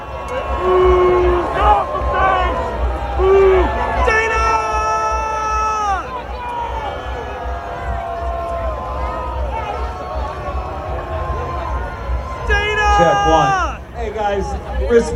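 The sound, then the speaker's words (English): A rowdy crowd heckles Michigan Attorney General Dana Nessel on stage, shouting and yelling over one another, a loud, continuous din of many voices with strained, rising cries standing out throughout. “That is a rough crowd.”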